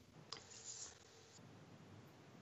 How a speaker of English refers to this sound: Who's typing? It's really loud.